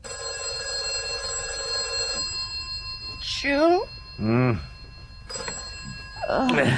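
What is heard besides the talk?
telephone bell ringing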